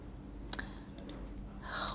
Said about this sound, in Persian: خب من یه چند تا کلیک باید بکنم.